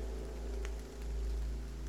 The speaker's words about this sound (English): She turned back to face the truck, stood still and listened. Just the soft sound of the rain and the horses shifting in the trailer.